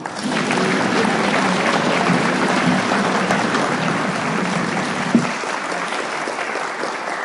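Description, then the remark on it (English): A group at a recovery meeting for alcoholics claps steadily for several seconds as the group's secretary is called up to give the report, a dense, even patter of many hands that stays loud throughout, with one sharper clap standing out near the end. “A little more clapping.”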